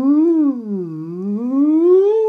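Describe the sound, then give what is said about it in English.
A single voice hums a sustained nasal "ng" tone that dips lower, then glides smoothly back up in pitch, steady and without a break. “The first thing is the NG sound, which is a.”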